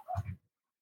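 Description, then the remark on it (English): A female dog gives one short, muffled bark, fairly quiet, followed by silence. “She's going to bark. There's somebody walking down the alley or something.”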